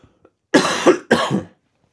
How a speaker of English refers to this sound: Hold on, quick cough.